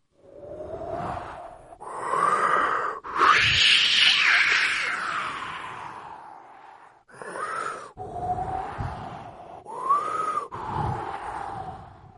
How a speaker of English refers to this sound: But then, all of a sudden, the weather began to change. It got cloudy, very, very cloudy, and it started to get very windy.